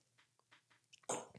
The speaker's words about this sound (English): Let me just have a sip of this drink. It's kombucha, by the way.